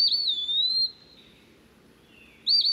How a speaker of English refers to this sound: The eastern peewee has a catchy tune, too.